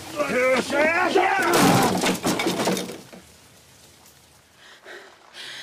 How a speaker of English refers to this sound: He's not here. Break down the door.